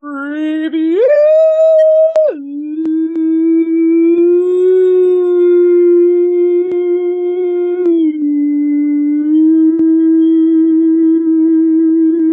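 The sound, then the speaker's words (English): A single long, unbroken howl imitated by a human voice, loud, rising sharply in pitch near the start, then holding a steady, slightly wavering tone for about twelve seconds. “Dogs are howling”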